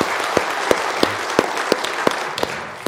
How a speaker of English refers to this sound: Hasn't this music been wonderful today? Let's just give the Lord a hand clap of praise for what we've experienced so far.